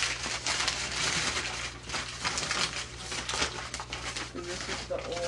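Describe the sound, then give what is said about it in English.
Continuous rustling and crinkling of two crumpled pieces of paper being handled, with irregular crackles over a steady low hum and a faint voice in the background. “Here's the two pieces of paper that I've thrown in here.”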